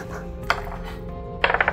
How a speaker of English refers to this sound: Roll a strength contest. Okay. So each roll a d20. D20.